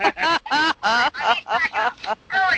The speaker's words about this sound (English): I love that ringtone.